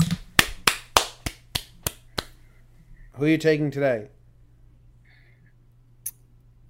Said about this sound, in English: Thanks for those claps. You're welcome. Felt a little mocking at the end.